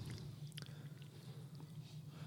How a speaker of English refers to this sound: Oh, it tastes like freaking mango juice. He's taking a rather large sip here.